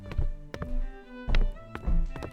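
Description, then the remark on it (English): Heavy footsteps of three men thud across a hard floor as they walk into a basement through a back door, several dull, echoing steps landing at an uneven pace with a faint low hum underneath. “The three men walk into the basement through a back door.”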